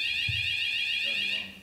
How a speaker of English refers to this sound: Thank you. The alarm is here. Now, didn't like that.